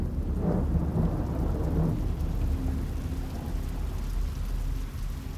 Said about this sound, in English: Sunday, June the 18th, 1815. The rain is relentless till the early hours.